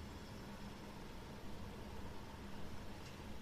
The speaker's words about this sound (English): Which membranes are resonating with that, with the low hum, with the traffic hum?